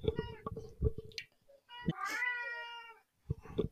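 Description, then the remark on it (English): A stray cat lets out a long, drawn-out meow with a rising then falling pitch, preceded by some short chirping and clicking sounds and followed by a few more brief noises. “Is that your cat over there that we keep seeing and hearing?”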